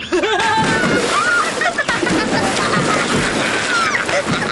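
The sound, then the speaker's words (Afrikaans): A heavy splash as a body plunges into cold water in a cannonball jump, followed by continuous churning and sloshing, loud, with excited voices shouting and squealing over the commotion. “Is jullie allemaal gereed? Ja! Ja! Ja! Bommie!”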